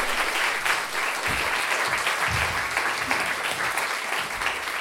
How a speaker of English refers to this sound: Round of applause